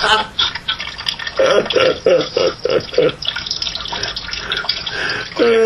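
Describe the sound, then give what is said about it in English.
A water fountain runs steadily, a continuous loud splashing rush with a brief series of gurgling, bubbling bursts partway through. “I'm in front of my water fountain now.”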